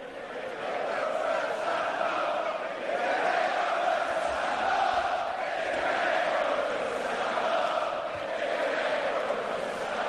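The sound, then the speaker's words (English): A huge London arena crowd at Money in the Bank chants "Stand up if you hate Roman" in unison, their massed voices forming a loud, sustained sing-song roar with a rising and falling melody that carries on steadily without a break. “They're singing, "Stand up if you hate Roman."”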